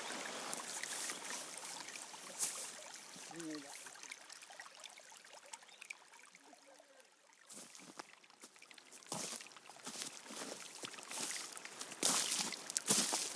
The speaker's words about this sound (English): You can hear the water, but you can't see it. You've had a glimpse of it so far. Part of the journey we're going to take now will be increasing noise of water and these little reveals that start to build the anticipation of the journey.